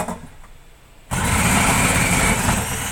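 After about a second of near quiet, a new food processor motor switches on abruptly and keeps running with a loud, steady, broad whirring roar until the end.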